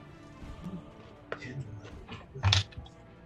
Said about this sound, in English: I love this tower, but the mouth is really small, trying to get my fingers in there. fat fingers. Get the dice out.